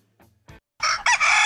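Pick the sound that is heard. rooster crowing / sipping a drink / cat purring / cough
rooster crowing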